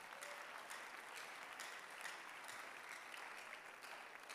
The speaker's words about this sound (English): You can clap your hands if you want to clap.